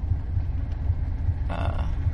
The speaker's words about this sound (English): Oh boy, there's a train going by, and that is really going to pick up. You might have to roll your window up.